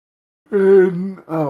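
A person yawns aloud, a drawn-out voiced groan that sags in pitch, breaks briefly, then trails off in a second shorter moan. Fairly loud, with no talking.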